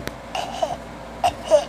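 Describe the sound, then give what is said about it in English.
A person fakes a small child's cough: three short, squeaky, voiced coughs in quick succession, moderately loud, with no other talking. “Like the fake kid cough, like.”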